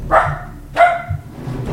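Two sharp dog barks ring out, evenly spaced about half a second apart, with a low rumbling background beneath them.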